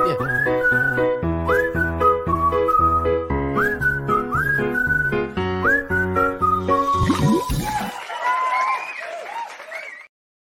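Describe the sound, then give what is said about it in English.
A short musical jingle for the Munson's Money Moment segment, with a bright whistled melody over bouncy backing, ending in a burst of applause and cheering from a crowd before cutting off. “So let me just give you the jingle for Munson's money moment, because this has got the whistling on it.”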